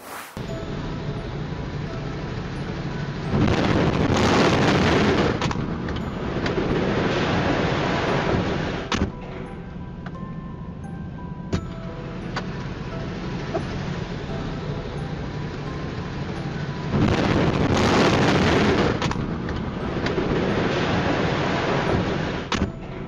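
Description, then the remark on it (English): A powerful grain silo explosion roars out twice as a heavy, rushing blast, each burst lasting a couple of seconds over a constant low rumble of background noise. “This is a very dramatic explosion, as you'll see in this video.”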